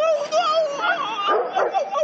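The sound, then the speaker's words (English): A dog whines and whimpers in high, wavering tones for about two seconds, with a few short yips breaking through near the end, steady in loudness. “Hey, Butkus! Come here, kid. And this was really Sylvester's dog.”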